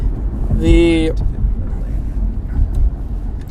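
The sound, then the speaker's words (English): An aggressive pickup truck that would not yield the lane passes on the road, its engine briefly revving with a rising harmonic whine, then fading into steady low road and wind rumble. “By the way, on a side note, we have an aggressive pickup truck that didn't want to yield the lane.”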